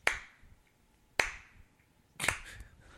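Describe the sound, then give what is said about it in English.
Three crisp finger snaps, spaced roughly a second apart, each a sharp bright click with a short ringing tail; the last one sounds slightly fuller. No talking, only faint background noise between snaps. “I'm snapping.”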